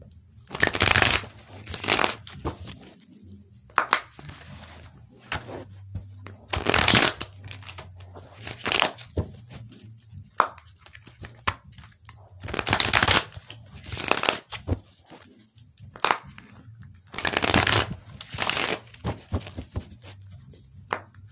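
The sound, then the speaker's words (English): Repeated bursts of a deck of cards being riffled and shuffled, each flurry a few seconds long with short pauses between, over a faint low hum. “Shuffle some more.”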